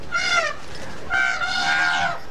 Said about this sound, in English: At Pinnawala Elephant Sanctuary, 60 miles southwest of Viharagala, a herd of trumpeting elephants heads down to the Mahaweli River for their afternoon bath.